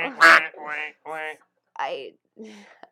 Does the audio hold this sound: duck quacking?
yes